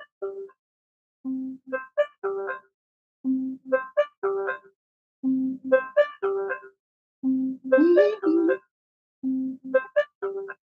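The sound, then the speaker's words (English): The Be My Eyes app on a phone plays its ringing tone while searching for a volunteer who speaks the same language: a bright, chiming melody of several notes repeats about five times with short pauses between phrases, with no one talking. “That means it's searching for a volunteer.”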